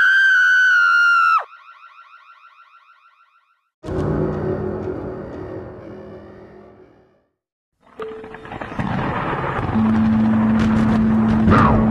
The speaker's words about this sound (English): Nobody heard her screams over the wailing alarm.